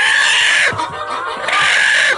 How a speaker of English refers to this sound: Next, we head to Walker, Alabama, a neighborhood being terrorized by an aggressive chicken. A what now?